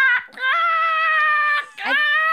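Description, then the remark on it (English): A person imitates a raccoon's scream with two long, shrill, wavering cries separated by a short gasp, loud and strained, with a harsh nasal edge and a sharp rise at the start of the second cry. “raccoons make a very terrifying noise.”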